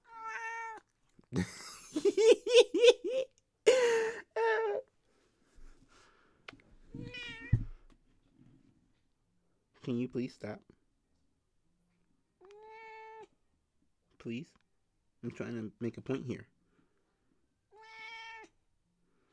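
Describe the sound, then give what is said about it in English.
A gray cat meows loudly and insistently into the microphone, a series of drawn-out, harmonic cries spaced a few seconds apart, with a person briefly speaking in between. “Okay, the point is not the cat screaming into the microphone.”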